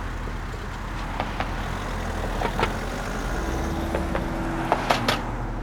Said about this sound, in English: We each got our little corner, baits in the water, and you can hear the traffic on the bridge above us.